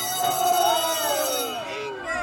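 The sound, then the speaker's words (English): A school bell rings continuously and loudly for a couple of seconds, a bright metallic clangor with a steady tone, while a murmur of voices carries on underneath. “Saved by the bell again”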